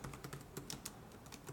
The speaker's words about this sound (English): And just typing is bothering me. I'm gonna have to. I'm gonna have to like look. Okay. I have to knock this off.